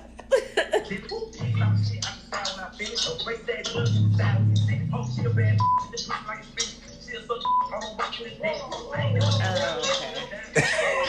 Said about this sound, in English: Okay, I hear it now. I wasn't listening to the words. Okay. I just heard the beeps.